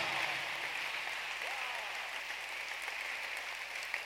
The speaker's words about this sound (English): It is at this point that I want to ask all of you to put your notebooks down and clap for Peter.